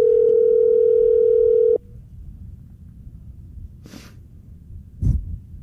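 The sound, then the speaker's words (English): A steady electronic ringback tone from an unanswered phone call sounds for nearly two seconds, then cuts off into quiet line hiss, broken by a couple of short breathy sniffs. “See, he's not answering.”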